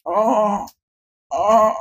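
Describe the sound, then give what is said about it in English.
A man lying on the ground with both legs broken moans weakly in pain twice. Each groan is drawn out for under a second with a wavering, low voice, separated by a brief silence. No words are spoken. “And you see a man with a curly gray beard and curly gray hair and a checker shirt lying on the ground with both his legs broken, moaning weakly.”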